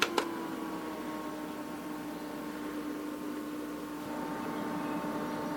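An air conditioner fan running at its highest setting, speed 3: a loud, steady rush of air with a constant low motor hum, opened by two quick clicks as its button is pressed.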